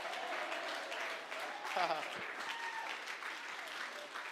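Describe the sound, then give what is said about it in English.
An audience claps their hands in a steady, dense burst of applause lasting throughout, with scattered voices calling out underneath the clapping. “Oh, I wish somebody clapped their hands and shout, yes.”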